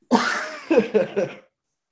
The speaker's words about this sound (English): Especially the coughing.